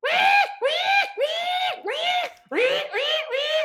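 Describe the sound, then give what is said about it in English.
A human voice imitates a pig screaming: about seven loud, harsh, squealing bursts in quick succession, each sliding in pitch, with no other talking. “As soon as I turned around, I heard this belloping, like, scream.”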